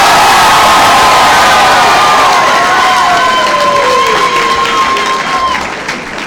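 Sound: audience applauding and cheering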